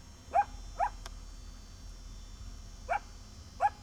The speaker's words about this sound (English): Huh. Sounds like a dog. Who knew?